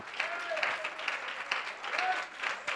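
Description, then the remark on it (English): A church audience clapping steadily together in praise during a worship service, dense sustained applause with faint voices mixed in beneath it. “Give the Lord a real good hand and clap of praise.”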